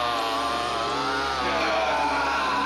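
A chainsaw engine roars steadily and loudly, its buzzing pitch wavering slightly as it revs, continuous for the whole stretch with no voices.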